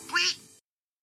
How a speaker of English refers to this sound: I did find it funny when Sweetie changed her face to Plucky and then just made a quack sound.